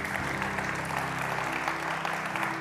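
A crowd claps steadily throughout, a dense wash of many hands with no clear rhythm, moderately loud, with a faint low hum underneath.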